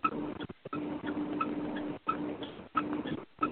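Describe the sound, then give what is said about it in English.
A turn signal ticks in a steady run of sharp clicks over a constant low hum and muffled background noise, with no voices. “We got a clock ticking now. That's duty turn signal.”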